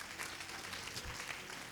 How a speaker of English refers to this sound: If you don't feel ashamed, go ahead and clap.